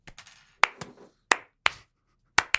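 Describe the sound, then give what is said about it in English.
A few people clapping in brief, uneven bursts after someone finishes a report on Caligula and asks for applause: about seven or eight sharp claps with short gaps between them, fairly quiet and with no talking. “Clap for me.”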